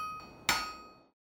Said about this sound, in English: the famous philosopher Pythagoras was inspired by the variance in pitch when different hammers were hit against an anvil by a blacksmith. The blacksmith explained to him that each of the hammers had a different weight, causing the variance in pitch.